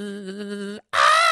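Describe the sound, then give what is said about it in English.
A voice imitates a buzzing house fly with a steady, nasal drone, then breaks off briefly before a louder, brighter, higher-pitched burst of buzzing. “There's, you know, birds, flies, any flying thing, I'll make the noise.”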